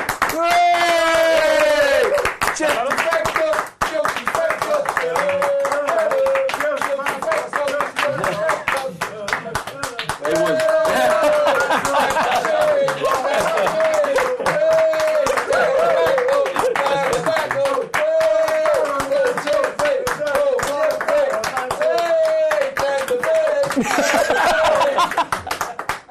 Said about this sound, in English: More applause, right, thank you.